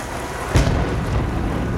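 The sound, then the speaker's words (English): A sharp crack of thunder from a lightning storm bursts out over steady, heavy rain, its deep rumble rolling on beneath the hiss of the downpour. No one speaks. “Thunder and lightning was crashing all around us.”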